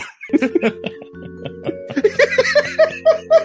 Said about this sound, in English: We got inside a Mellotron. Well, you see, there are hundreds of tapes. This one has tapes of children screaming.